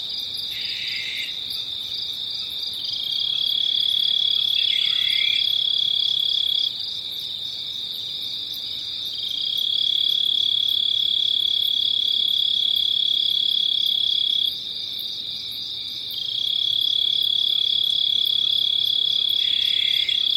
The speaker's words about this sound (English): of the dawn start singing and the very last cricket of the night stops singing. And I think that's a really special opportunity to listen to that inflection point where day meets night.